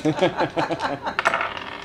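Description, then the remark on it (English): Steel dice, rolled for a stealth check, tumble and clatter across a hard surface, a quick run of bright metallic clicks and rattles that bunch together near the end before settling. “You're about to hear the real experience. Steel dice will be stealth.”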